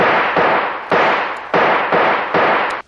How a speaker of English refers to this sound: Stand back, you fool. The only chance is to shoot the lock off that door.